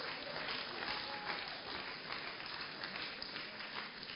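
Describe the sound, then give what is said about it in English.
A church audience claps for the Lord in a dense, steady wash of many hands, holding an even loudness for about four seconds with no voices standing out. “You can give the Lord a wonderful clap of him.”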